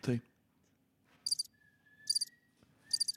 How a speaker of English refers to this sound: Oh, now push the crickets.